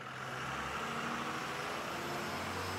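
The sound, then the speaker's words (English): A large bus engine rumbles steadily as the bus runs and drives off, a broad, constant roar of a heavy road vehicle with low hum and no voices. “Let's get on the bus.”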